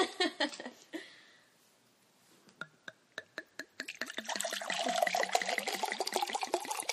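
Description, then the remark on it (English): Wine glugs out of a bottle into a glass, starting as a few separate gulps that quicken into a steady, rapid gurgling pour, fairly loud. “Pouring sound.”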